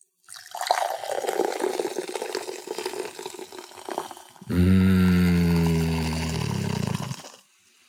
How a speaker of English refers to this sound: Cold, refreshing, sparkling water.